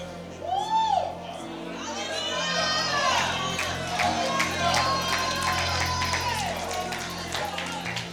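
audience clapping and cheering

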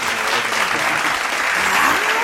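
clapping sound effect

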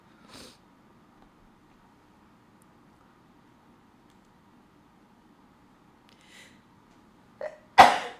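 sneeze

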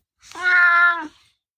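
cat meowing

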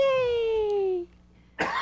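cough

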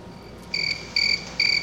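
cricket chirping sound effect

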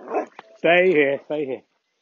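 dog barking

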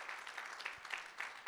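audience clapping

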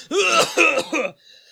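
coughing fit

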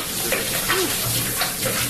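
shower water running

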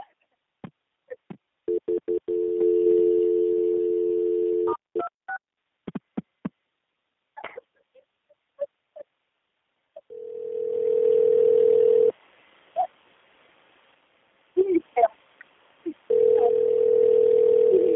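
telephone dialing tones

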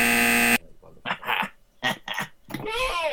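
quiz buzzer

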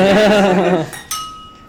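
glasses clinking

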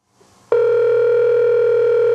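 telephone ringing

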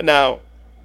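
cat meowing

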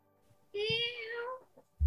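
cat meowing

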